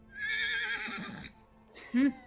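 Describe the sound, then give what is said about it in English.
A horse whinnies loudly in a shrill, quavering call lasting about a second, then gives a short, lower snort after a brief pause. “Might be time to start setting up camp, letting the horses rest, stuff like that.”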